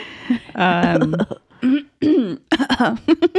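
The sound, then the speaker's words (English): A person imitates their grandfather's coughing as a homage: a drawn-out, wavering vocal sound followed by a quick series of short, harsh cough-like bursts, fairly loud and with no background noise. “That's coughing.”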